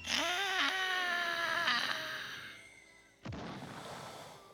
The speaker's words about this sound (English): The arrow line streaks downward and falls short. Damn! Missed by a few inches. And with a final despairing shriek, the terrified thug plunges downward to his doom.